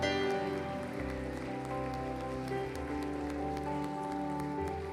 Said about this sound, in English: And everybody said, amen. Amen. Come on, give Jesus a hand clap of praise this morning.